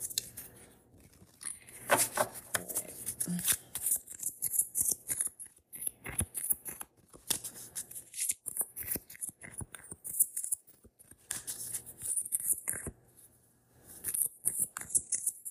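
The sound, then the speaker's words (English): A deck of cards being shuffled: dense bursts of crisp, papery flicks and riffles come in uneven waves, with short pauses between rounds and no talking. “Let me shuffle one more.”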